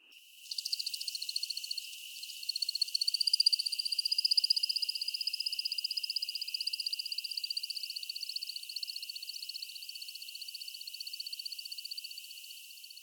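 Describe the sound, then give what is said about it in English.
A male American woodcock's song during its courtship display flight: a long, unbroken stream of high, liquid chirps and twitters in quick rhythmic succession, steady and fairly clear for the whole stretch, with no voices. “When a male is in flight doing his courtship display, he will make a series of liquid chirps.”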